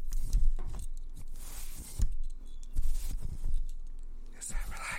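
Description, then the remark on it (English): A bracelet jangles in irregular bursts, quick metallic clinks mixed with soft rustling and handling sounds, fairly quiet and scattered across a few seconds with no one speaking. “No, because all I hear is your damn fucking bracelet.”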